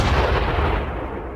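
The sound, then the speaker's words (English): An artillery shell being fired at a 27-degree projection: a heavy blast with a deep, rumbling low end that stays loud and slowly decays over about a second and a half, with no voices. “Can't see the shell land, sir.”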